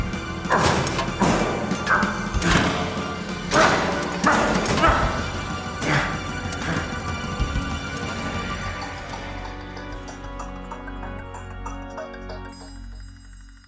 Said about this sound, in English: It's banging against the windshield. If that breaks, there's no way we can go into space.